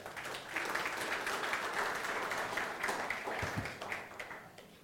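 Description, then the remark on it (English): A crowd applauds steadily for several seconds, many hands clapping in a dense, even patter that holds its level throughout. “Clap for him.”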